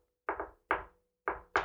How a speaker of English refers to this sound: You two hear a knock that goes something like...